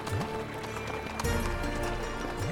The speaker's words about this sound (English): God led me to pray, and our horses ran across the surface of the water.